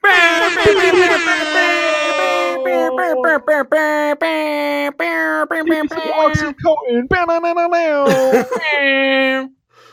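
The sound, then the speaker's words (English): Loud, blaring air horn blasts, apparently imitated by a voice, come in a rapid run of stuttering honks with wavering pitch, close and harsh, before cutting off abruptly into silence. “I just gave you air horns, so yeah, you know.”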